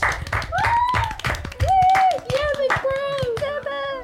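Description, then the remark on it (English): A round of applause in a town for a man rising to the position of sheriff: steady, dense hand clapping for about four seconds, with long whooping or whistle-like cheers rising and holding over the claps. “While he's in recovery, at the moment we'll have a round of applause for Derek Harlow rising to the position of sheriff.”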